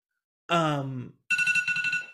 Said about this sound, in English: That's our Drag Race. That's the Drag Race alarm.